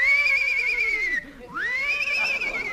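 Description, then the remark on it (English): A horse whinnies loudly as someone gets up on it: a long, wavering high-pitched neigh that briefly drops off, then swells back into a second quavering cry, with no other sounds around it. “Easy getting up on that horse.”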